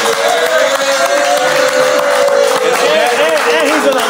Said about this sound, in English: You deserve to be saluted. You deserve to be clapped for. You deserve to be all that.